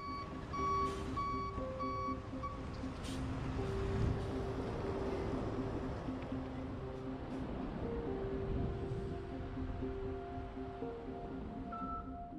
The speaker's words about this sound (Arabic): لدينا هنا شاحنة تنعطف، قد يكون علي التراجع قليلاً إذا لم ينجح في الالتفاف.